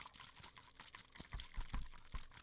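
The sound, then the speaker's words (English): Coconut water sloshing and gurgling inside a bottle held to the ear, with irregular splashy surges and soft knocks building toward the end, no voices present. “No, I just hear like murky, we're looking water sloshing around in a bottle.”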